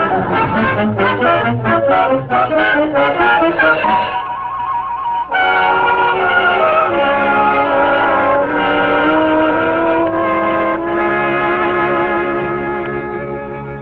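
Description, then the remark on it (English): Loud rumble of heavy fire engines pulling up and stopping out in front, with droning horn-like tones over the motors. The sound dips briefly partway through, then holds steady. No one speaks. “look, the engines are stopping right out in front.”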